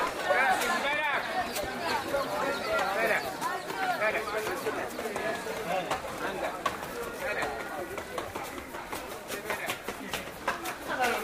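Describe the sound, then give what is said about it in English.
Busy crowd chatter fills a narrow alleyway, too narrow for cars, inside the ancient walled old city of Fez. Donkey hooves clop intermittently on the pavement amid overlapping voices and footsteps, steady throughout. “So the traffic inside Old Fez is mostly people and donkeys.”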